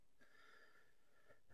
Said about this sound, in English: Uh-oh. It's late. I'm sorry. It's a big yawn.